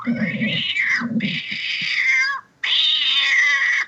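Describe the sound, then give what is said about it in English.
A cat's harsh, wavering fighting shriek, loud and high-pitched, with low growling underneath, a short break, then another sustained screeching yowl. No one speaks. “That would be a fighting shriek.”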